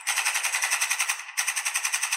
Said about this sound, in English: Couple of AK-47 gunshots.